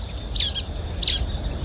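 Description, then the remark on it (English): Two bright, squeaky-toy calls of a brown-headed nuthatch, each a short doubled squeak about half a second apart, heard clearly over a low rumbling outdoor background with other birds calling, on the Gator Lake Trail at Bon Secour National Wildlife Refuge on the Gulf Coast of Alabama. “There's a bunch of other birds calling as well, but there's a particular squeaky toy sound, and it's a brown-headed nuthatch or two.”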